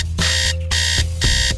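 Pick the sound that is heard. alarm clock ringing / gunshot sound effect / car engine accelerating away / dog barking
alarm clock ringing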